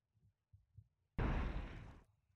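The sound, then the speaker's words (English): A person imitates an explosion with their voice: a sudden loud, rough burst of breathy noise lasting about a second, preceded by a few soft low thumps. “My explosion sucked, but you get the fucking point.”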